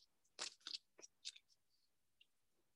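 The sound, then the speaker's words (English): Cards being shuffled by hand outdoors on a chilly, windy day by someone with cold hands, a handful of crisp, papery flicks and slaps in quick uneven succession, fairly quiet, then fading to near silence. No one speaks. “So I'm struggling with the shuffling of the cards.”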